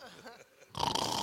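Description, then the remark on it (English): A person makes a rough, noisy imitation of snoring, starting with a low murmuring voice and then breaking into a loud, raspy burst. “Is that how you snore? Just like that?”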